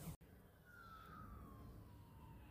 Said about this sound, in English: There's an ambulance. An ambulance!